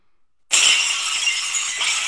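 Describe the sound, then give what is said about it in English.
Glass shatters suddenly after a moment of silence, a loud, bright crash whose tinkling shards keep ringing and scattering for well over a second, with no talking. “Yeah, the glass shattering, you 100% already know who it is.”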